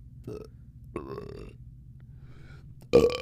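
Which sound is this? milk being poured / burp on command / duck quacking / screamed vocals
burp on command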